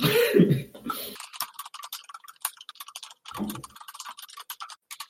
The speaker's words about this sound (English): I love the sound of the typing.